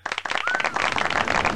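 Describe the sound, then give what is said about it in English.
A burst of crowd applause played as a sound effect, many hands clapping in a dense, steady patter that swells quickly and holds loud throughout, with a faint whistle rising briefly near the start. “I'm gonna give you I'm gonna give you a round of applause for that.”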